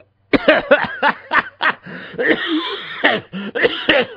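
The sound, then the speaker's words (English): A person coughs and laughs at the same time, a run of sharp bursts with breathy, choppy laughter mixed in, lasting a few seconds with no talking. “You made you started to cough and laugh at the same time.”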